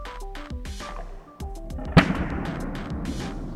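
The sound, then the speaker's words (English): A heated aluminum can, its top submerged in ice water, implodes with a single loud, sharp crack about halfway through, followed by a rough, fizzing wash of noise. Soft tonal sounds come before it, and nobody speaks. “The can implodes.”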